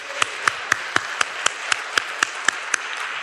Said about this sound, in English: Give all those folks a round of applause.